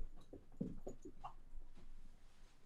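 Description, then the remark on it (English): A dog whimpers in a few short, whiny bursts close together, then falls quiet; fairly soft, with no one talking. The dogs, Daisy and Duke, are being let in. “Y'all let the dogs in. Show the dogs.”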